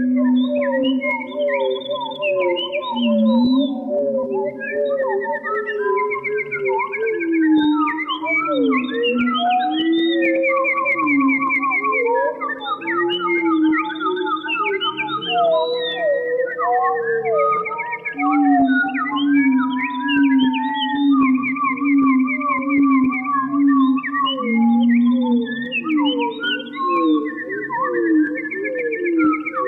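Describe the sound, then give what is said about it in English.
A composition of bird calls recorded in the forests of Quebec province, electronically manipulated in the studio: warbling chirps, sliding whistles and trilled phrases at many pitches weave together, some stretched low and droning, forming a dense, steady chorus with no talking. “uses a little studio wizardry and electronic manipulation to deliver this composition of bird calls recorded in the forests of Quebec province.”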